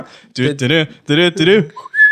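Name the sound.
person whistling a tune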